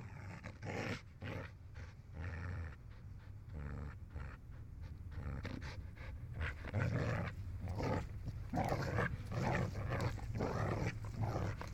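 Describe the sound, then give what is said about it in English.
A dog, Dakota, producer Chad Blake's dog, pants heavily and rhythmically, with rough, breathy huffs and low growling-like rumbles continuing steadily throughout, no talking. Binaural recording at the beginning of a song. “However, I think it's just the dog in the beginning is the only binaural part, which of course is Dakota, Chad Blake's dog, the producer.”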